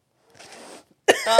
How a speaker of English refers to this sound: That was a big sniff.